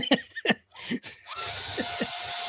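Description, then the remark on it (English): A few quick laughs, then a power drill starts up and runs steadily with a high motor whine for over a second while chuckling continues over it. “And for those audio listeners, that is the drill. Drilling. Yes, that is the drill.”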